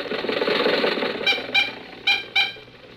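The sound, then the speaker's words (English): Jack Benny's car engine, carrying three people home from the races, runs with a steady, buzzing rumble that soon drops lower, followed by four short, high-pitched harmonic squeaks in an uneven rhythm. No one speaks. “When the races were over, Jack, Dennis, and I were riding home in Jack's car.”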